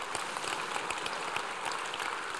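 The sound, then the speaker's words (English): An audience claps steadily, a dense crackle of many hands with no clear rhythm, holding an even loudness throughout and no voices on top. “The second part, you can clap. It'd be a good place to clap.”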